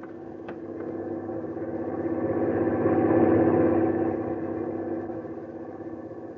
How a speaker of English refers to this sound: Truck is stopping in front of the boat.